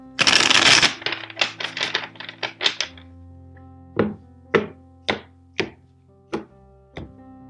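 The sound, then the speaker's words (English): A tarot deck is riffled in a quick burst of crisp flutter during a tarot reading, the last of four shuffles, followed by a run of rapid taps, then about six slower, evenly spaced soft thuds as the cards are squared and set down. “And the last shuffle.”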